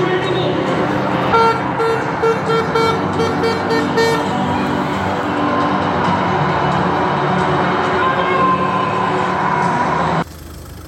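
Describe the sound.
Steady road traffic rumbles at the White Gates in Oldham as people get into a car for a lift home to Denton, with a couple of short car horn toots near the start; indistinct voices murmur underneath before the noise cuts off abruptly near the end.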